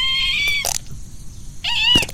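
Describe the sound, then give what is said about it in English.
Two harsh, strained squawks from an agitated, trapped bird called Mr. Squeakington, stuck about 30 centimetres in, each a high, buzzy cry ending in a rough, noisy burst, separated by a short quiet gap. “Such a furious little bird.”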